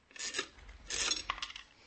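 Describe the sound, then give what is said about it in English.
A dime drops into a coin-operated radio: two soft scraping rustles, then a small bright metallic clink followed by a few quick ticks, all fairly quiet with no voices. “Here's a dime. Throw it in the radio. No? Then I'll throw it a dime.”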